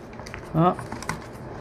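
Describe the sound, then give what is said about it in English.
A single brief crunching squeak as a paper punch presses through stiff, gritty microbead-coated paper, standing out against a quiet, faintly noisy background. “This could like totally muck up a paper puncher too, but I'm gonna try it.”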